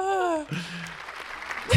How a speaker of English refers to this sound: you needed more applause. You needed more applause.